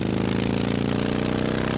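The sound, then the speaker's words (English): A motorcycle engine runs with a steady, loud, low rumbling drone, its throbbing tone holding even throughout with no talking over it. “So can we kind of let it rip, let it roar?”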